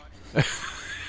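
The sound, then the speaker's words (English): A single short, bright squeak from a squeaky toy being played with by a small black pug-mix dog, loud for a moment, then fades into a quiet, steady background. “It's a dog. It's a dog, okay. Get out of here. Yeah, she's playing with her toys.”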